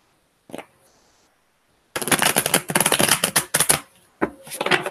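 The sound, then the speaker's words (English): A deck of tarot cards is shuffled for a Taurus reading: a short snap at first, then a long fluttering riffle of rapid crisp clicks, a brief pause, and another burst of shuffling. “One more shuffle for Taurus.”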